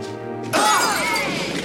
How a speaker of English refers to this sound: I love it when he steps on the glass. Yeah. So he just throws the glass. Every step he takes, just he shatters a new glass in front of him.